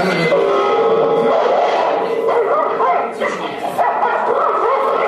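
A dog barks and yips loudly, its excited, high-pitched cries running almost continuously for several seconds with only brief pauses.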